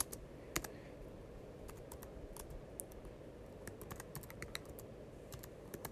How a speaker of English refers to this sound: The names are, let me see. I'm typing them in so I can get the right name.